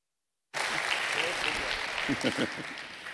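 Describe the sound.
An audience at a church service at Austin Oaks Church breaks into steady applause to welcome a guest speaker up to the front. It is a dense, continuous wash of clapping that starts abruptly and holds at an even level, with a few voices briefly audible in the crowd.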